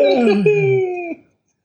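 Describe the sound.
A person does an exaggerated, loud, drawn-out yawn, a single roaring, groaning breath lasting just over a second that trails off abruptly into silence.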